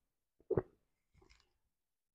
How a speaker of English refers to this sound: excuse me, I'll take a sip of water here.